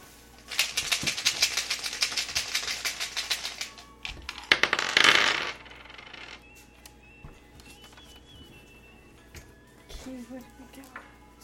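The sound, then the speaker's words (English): Loud clatter of dice rattling and tumbling across a table during a dice game, in two quick bursts, a long one then a shorter one, followed by quiet with a faint voice near the end. “We got dice.”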